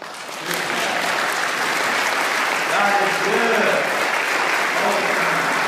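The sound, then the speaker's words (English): Steady, dense applause from a large group clapping for God fills the whole stretch at an even loudness, with a voice speaking briefly over the clapping partway through. “Let's clap for God.”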